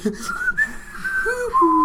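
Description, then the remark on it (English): A person whistles a short, wavering tune, the pitch sliding and jumping between notes over a couple of seconds, slightly breathy and unpolished, with no one talking. “That was a horrible whistle by myself.”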